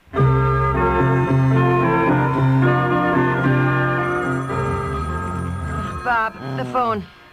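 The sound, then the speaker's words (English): A telephone beside a bed rings loudly and continuously for about six seconds, followed by a brief sliding voice-like sound at the very end. “The phone, it's on your side of the bed. Hey, what are you doing? Get the phone.”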